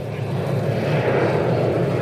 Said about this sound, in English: Here comes the plane. Wright brothers. That was right over our heads. It was, too. I was kind of thinking that. That's kind of an old plane.